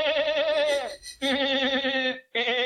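A goat bleats loudly and close up, three wavering, nasal cries in quick succession, the last one cut short, with no talking.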